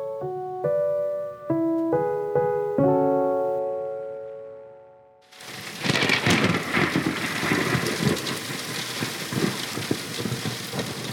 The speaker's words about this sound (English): Rain falls to the earth.